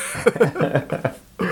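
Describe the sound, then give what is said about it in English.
Several short coughing bursts come in quick succession, a bit rough and throaty, with a brief pause before one last cough near the end. “I tried to mute it because I was going to cough anyway, and I hit the mute button, but it was just a little too late.”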